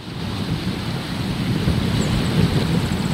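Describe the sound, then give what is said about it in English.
Steady roar of ocean surf mixed with gusting wind buffeting the microphone, heard from a tall dune near Vega Baja on Puerto Rico's north coast; a dense, continuous rumble that swells slightly louder partway through, with no voices. “I'm standing on a tall dune near Vega Baja in Puerto Rico's north coast. The ocean stretches out in shades of dark blue, turquoise, and pale aquamarine.”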